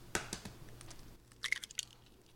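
Three eggs for a cake are cracked by knocking them together: a few sharp, crisp taps followed by a quicker cluster of small cracking and crunching clicks, fairly quiet, with no talking.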